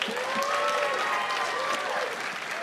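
Steady applause from an audience answering by applause whether they believe there's a God, a dense wash of many hands clapping at even loudness throughout, with faint overlapping voices and a whistle-like tone drifting underneath.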